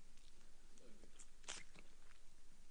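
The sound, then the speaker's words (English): A quiet sip from a drink: a brief slurp with a few soft mouth clicks and swallowing sounds, with no talking over it. “Just have a sip.”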